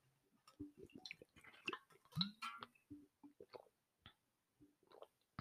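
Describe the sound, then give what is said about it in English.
Quiet sipping of a drink: a series of small wet slurps, lip smacks and swallows in an uneven rhythm, with brief silences between them and no talking. “Okay, hopefully you enjoyed your little sip.”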